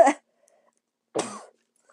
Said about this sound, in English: Of course I cough like that.